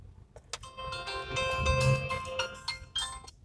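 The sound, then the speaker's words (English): A phone that was left unmuted rings, its ringtone playing for a few seconds, a bright melodic jingle of repeating high chiming tones with a steady, tuneful rhythm, moderately loud with no voices over it. “I didn't mute my phone.”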